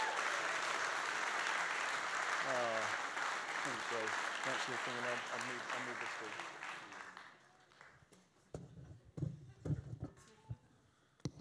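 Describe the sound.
A crowd bursts into loud, sustained applause welcoming a speaker, with a few voices whooping over it. The clapping fades out after several seconds, leaving scattered thumps and shuffling.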